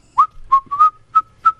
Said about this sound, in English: Why does it make you feel better to whistle? Why is that? I don't know. You're making your own music. Whistling a favorite tune. It's like when a person whistles, it's a happy.